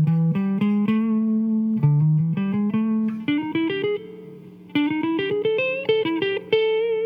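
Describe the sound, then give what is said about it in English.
An electric guitar plays a quick A minor pentatonic lick of picked single notes with a slightly distorted, sustained tone, rising in pitch across phrases, played alone with no talking. “That's A minor pentatonic.”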